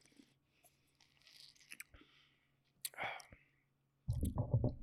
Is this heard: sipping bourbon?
yes